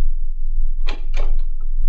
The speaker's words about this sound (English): A door opened, the other end of the room, and the giant Sudanese stepped in, red fez, baggy pants and all.